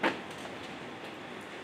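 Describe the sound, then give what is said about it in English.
A door swings shut with a single short, soft thump at the start, followed by a steady hush of room noise with no talking. The sound is fairly quiet. “would you close the door, please?”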